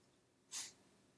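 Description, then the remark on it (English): A single short, breathy snort from a dog that keeps sniffing constantly, a sharp puff of air through the nose that rises and fades quickly against an otherwise quiet background. “Still sniffing constantly now.”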